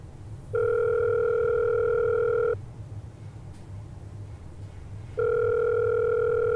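A phone's ringback tone purrs twice through the earpiece during a call made about the WKTZ radio station, each steady two-second ring separated by a longer pause, over a low background hum with no one speaking.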